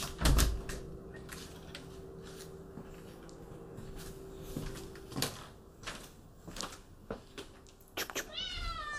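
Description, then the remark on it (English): A cat meows briefly near the end, a short rising cry, after a stretch of scattered clicks and taps over a low steady hum. “I'm just going to open up the door because the pooper is here, so the kitty cat might need to go to the pooper.”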